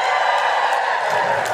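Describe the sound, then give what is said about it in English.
An audience cheers loudly and steadily to vote that the speaker is more of the wizard variety, a dense wash of many voices yelling together without a break for the whole moment, with a few higher whoops poking through. “If you think I'm more of the wizard variety, cheer now.”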